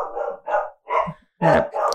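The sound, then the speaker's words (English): A dog barks five times in quick succession, loud, each bark short and sharp with brief gaps between, the last two coming faster and stronger. “Ooh. Dog interference.”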